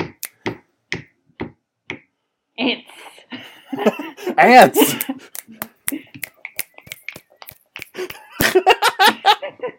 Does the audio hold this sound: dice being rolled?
no